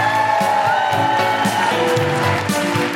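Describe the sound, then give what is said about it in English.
An audience at The Guilty Feminist show applauds and cheers for performer Jess Robinson in a steady, dense wash of clapping and crowd noise that holds at an even level for the full few seconds, with no clear pauses. “And now keep that applause going for the incredible Jess Robinson.”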